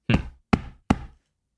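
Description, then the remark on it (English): Three firm, evenly spaced knocks on a door, each a sharp thud with a short resonant tail, then silence. “I knock.”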